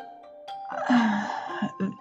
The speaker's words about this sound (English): I don't know why I'm yawning so much. and I apologize for that.